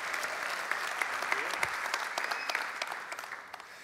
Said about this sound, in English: Like we like to do around here, can we give our worship team a round of applause? Tell them thanks for leading us.